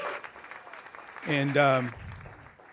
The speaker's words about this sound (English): Come on, one more time. Let's clap our hands and show our love and appreciation.